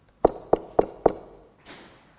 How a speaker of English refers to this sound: I'm standing at the door of your house. This is also your house, but also the house where you live. I'm standing at the door and I'm knocking.